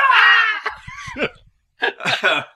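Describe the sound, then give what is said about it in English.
A person vocally imitates a Wilhelm scream: a loud, strained, high-pitched yell, followed after a brief pause by choppy, laugh-like vocal bursts. “You hear Wilhelm's screams off in the distance.”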